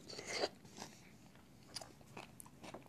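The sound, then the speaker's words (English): Crunchy chewing of a frozen triple berry blend of strawberry, raspberry and blueberries with Silk almond milk, acai berry, yogurt and granola: a loud bite at the start, then a series of crisp, irregular crunches and crackles as the icy pieces are chewed, with no talking. “Right now, I'm having a triple berry blend of frozen fruit, strawberry, raspberry, and blueberries with some silk almond milk, acai berry, yogurt.”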